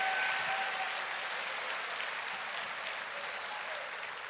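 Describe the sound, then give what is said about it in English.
A church audience claps steadily together in praise to God, a dense, sustained, even wash of applause for several seconds with no voices standing out. “Clap your hands and give praise to God.”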